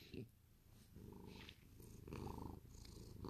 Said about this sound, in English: She's my cat I got 7 years ago. And she always makes me very happy. Her purring always puts me to sleep.